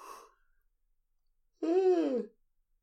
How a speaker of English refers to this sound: Oh, jeez. I went so long without yawning. And there it is.